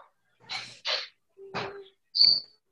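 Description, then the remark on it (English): A parrot lets out four quick, harsh squawks in a row, the last ending in a shrill whistle-like note. The calls are loud, with short silences between them and no talking. “Parrot?”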